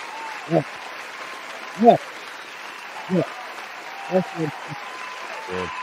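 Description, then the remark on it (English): An applause sound effect played in praise of the 49ers: a steady wash of applause hisses throughout, punctuated by about half a dozen short, pitched vocal whoops or shouts rising above it at irregular intervals. “Let me give you a real applause.”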